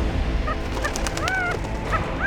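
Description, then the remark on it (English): A partridge, landing by Daedalus's side with a leaf in its mouth, gives a series of short, raspy calls, four or five in quick succession, clear over a steady low background hiss, with no one speaking. “Then a partridge landed by Daedalus's side, a leaf in its mouth.”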